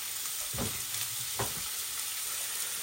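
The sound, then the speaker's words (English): Beef, previously frozen and already defrosted, sizzling in a frying pan with chilies that have been frying for about 5 minutes, a steady bright hiss with a couple of heavier bursts as the meat is moved or stirred around and broken up. “I'm going to put the beef in now, which was in the freezer, so it's going to defrost. It's already defrosted. You can hear that.”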